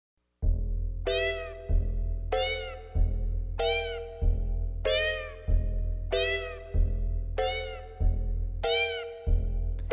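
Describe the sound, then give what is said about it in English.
A cat meows about seven times in a steady, evenly spaced rhythm, each call loud, over a continuous low droning background. “Or should I say, meow.”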